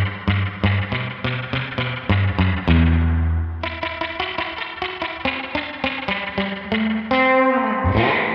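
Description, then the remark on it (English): An electric guitar plays quick, rhythmic picked notes through a reverb unit with the mixer and dwell controls turned all the way up and the tone rolled back a little, drenched in splashy, dripping spring reverb, each attack trailing a wet, boingy tail. Loud and steady, with no voices. “I like to have as much drip as I can get, and I really like the drip that comes off of this thing.”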